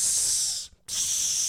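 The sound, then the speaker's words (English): A voice imitates the loud, sustained hiss of an audience hissing at a woman speaker, like a crowd of snakes, broken by one brief breath-like gap midway before the hissing resumes at full strength. “Like they were snakes. Hissing at her.”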